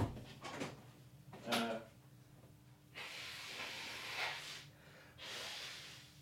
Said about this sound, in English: I'm going to go blow my nose. But I'll edit it all out. You shouldn't hear it. It might be funny, though. It might be funny in the edit.